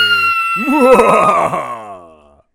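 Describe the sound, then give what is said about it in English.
A person screams on being killed, a strained, wavering scream that rises and trembles in pitch for over a second, then sags and fades away, with steady high electronic tones humming underneath throughout. “I could tell from your scream there.”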